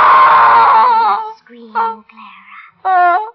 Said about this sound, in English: Scream, Clara.